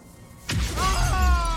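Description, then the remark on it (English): Window glass shatters in a sudden loud burst as a man is punched through the window by a psychic force, then bright ringing tones and a low rumble carry on to the end. No one speaks. “Super psychic force punches him through the window and kills him.”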